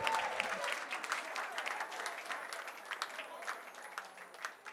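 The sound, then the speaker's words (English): A crowd claps steadily in sustained applause in praise of the Lord before a pastor's sermon, a dense wash of many hands that holds evenly before thinning slightly toward the end. “Give the Lord a big clap of praise.”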